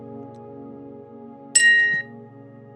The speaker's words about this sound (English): We will begin tonight's meditation, as we do with every meditation on Sunday evenings, with a chime, and we'll end it with a chime.